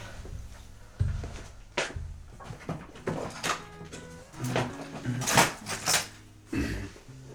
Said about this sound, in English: Okay, almost back. You might have heard some keys.